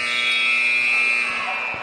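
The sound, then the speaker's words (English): A loud, sustained arena buzzer blares steadily for nearly two seconds at a boys' basketball game between Whitthorne and Santa Fe, before the second half starts; a harsh electronic tone rich in high harmonics, with faint crowd noise beneath it. “And there's the buzzer right there.”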